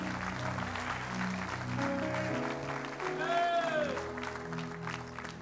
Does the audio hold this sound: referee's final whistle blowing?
no